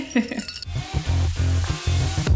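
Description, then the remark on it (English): A few quick, bright clinks of glasses of rosé wine with ice rattling inside, lasting under a second before giving way to a low, steady rumble. “We do have ice in it today because it was not cold. So yes. Jingles, but cheers.”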